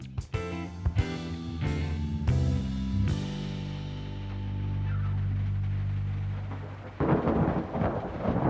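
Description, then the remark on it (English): Sharp cracks of thunder split the air, then roll into a long, deep rumble before steady rain hisses in near the end. No one speaks. “I hate rainy days.”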